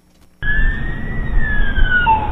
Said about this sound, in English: Police car. That is correct.